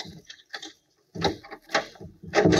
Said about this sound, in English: Now, open up the door.